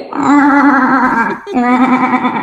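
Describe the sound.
A voice imitates a strained, constantly stalling car engine with a sustained, wavering whinny like a horse, loud, dipping briefly before resuming the quavering, nasal tone.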